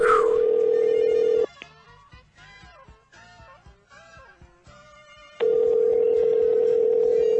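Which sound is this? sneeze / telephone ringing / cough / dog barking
telephone ringing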